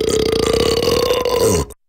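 A long, loud, deep burp rumbles steadily for nearly two seconds, with a low croaking texture, ending abruptly in silence before a brief sound cuts in at the very end.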